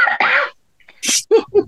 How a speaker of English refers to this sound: Well, no, you actually did cough, didn't you? I did. I've had this cough for about 3 days.